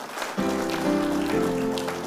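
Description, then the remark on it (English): An audience breaks into steady, dense clapping for the Lord that starts abruptly and keeps going, with a sustained keyboard chord ringing underneath. “Give the Lord a clap of me, someone.”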